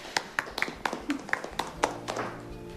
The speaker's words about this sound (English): We have reached the end of our class period and the end of our classes. Big clapping for you guys.